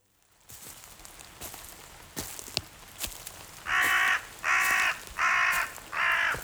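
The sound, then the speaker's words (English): A crow caws four times in a steady, evenly spaced series, loud, after a stretch of quiet outdoor ambience with a few soft ticks and taps. “Here, Mr. Crow. I see you. You don't scare me.”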